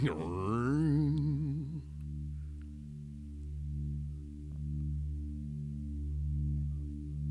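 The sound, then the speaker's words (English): A machine startup sound opens an album: wavering, rising whine of layered tones for about two seconds, then settling into a steady, loud low hum that pulses slowly, with no voices. “That machine startup it's thing. Like the THX.”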